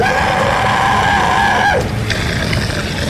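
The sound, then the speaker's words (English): A creature roars and screams in pain: a loud, strained scream holds high and harsh for nearly two seconds, then bends downward and breaks off, leaving a rough, rumbling roar underneath. “The creature roared and screamed up in pain.”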